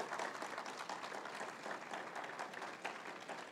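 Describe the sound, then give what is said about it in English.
A crowd gives a sustained round of applause to honor a woman, many hands clapping in a dense, steady patter that holds at an even level for several seconds without anyone speaking. “So if y'all can do me a favor and just give her a round of applause and honor her real quick.”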